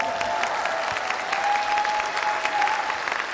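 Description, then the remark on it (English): A crowd claps steadily on coming back from a break, a dense and even wash of many hands with sharp individual claps scattered throughout, holding at a fairly loud level with no voices on top. “We get applause now from coming back from.”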